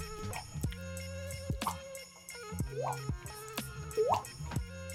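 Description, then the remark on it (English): Water drips from a faucet, a handful of bright, pitched plinks falling at a slow, uneven rhythm over a steady tonal hum, each drop clear with no one talking. “Today's episode is brought to you by A Leaky Faucet.”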